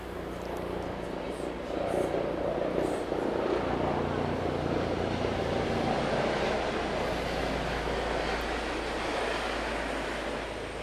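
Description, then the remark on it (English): A helicopter at a nearby helicopter airfield that flies people to the Croisette, heard from a multiplex cinema on the outskirts: a loud, steady engine and rotor drone with deep rumble that holds constant for about eleven seconds and drowns out everything else. “So yeah, I'm opposite the helicopter airfield where obviously they take people to the Croisette, maybe.”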